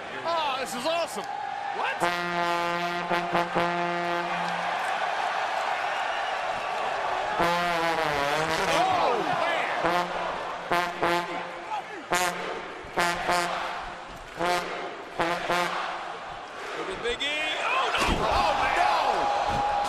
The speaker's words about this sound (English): Xavier Woods comes to the ring playing a trombone, and he does a trombone slide